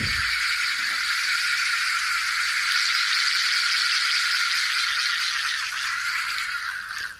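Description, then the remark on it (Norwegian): An audience invited by Cicada, for its Cicada Social Club series in its 30th anniversary year, imitates cicadas with a steady, loud, high rasping buzz that holds for about seven seconds without pause, then fades slightly at the end. No one speaks. “Alle kan vel høre at det et cicadepublikum.”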